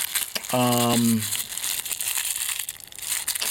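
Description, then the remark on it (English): Steady crinkling, crumpling and tearing of paper packaging being ripped open, with scratchy rustles throughout, briefly joined near the start by a short strained hum from a voice that slides downward in pitch. “Come on, paper. It's just paper. Just freaking rip it, dude.”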